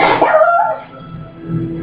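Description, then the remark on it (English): Porthos, Captain Archer's dog, in the ready room gives one loud, drawn-out bark near the start, its tone sliding downward, and then a low rumbling hum lingers in the background with no voices. “Why is he barking?”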